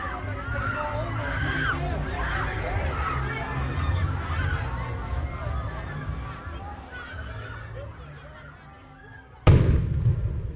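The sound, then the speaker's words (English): Fireworks pop and crackle intermittently in the night sky above a noisy outdoor crowd of onlookers with a steady low generator hum, ending in one loud boom that rings out over the chatter. “Fireworks crack open the night to reveal the men standing 20 feet in front of us in intermittent darkness.”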